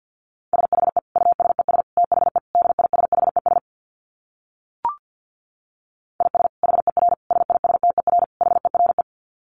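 Rapid Morse code in a single steady mid-pitched tone, keyed in fast dits and dahs at about 50 words per minute. Two bursts of sending are split by a pause with one brief click.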